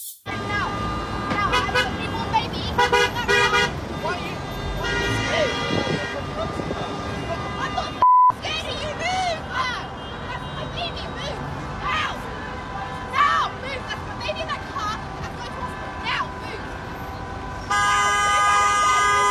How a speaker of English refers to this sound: And despite her pleas, the protesters continued to stand directly in front of her car while other stalled vehicles honked at the crowd to disperse.